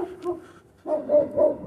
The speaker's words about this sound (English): And another dog. That's 19 dogs over the course of the week.